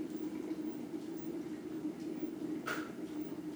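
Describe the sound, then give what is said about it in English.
A kettle of water boils for tea, a steady, dense hissing roar with a low hum, broken near the end by one brief, sharp click as the kettle clicks off. “There it goes. I'm going to pour my tea.”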